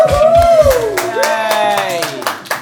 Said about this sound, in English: Well, obviously everyone in the audience is going to be whooping and cheering as we introduce the show, Just Another Panel Show.